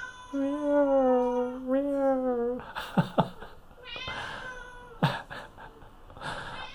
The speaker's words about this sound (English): Look at him. There he goes. He's like, yeah, cuddles, cuddles. Funny, funny. He's a good kitty cat. He's a good kitty cat.